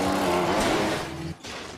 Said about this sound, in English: Motorcycle.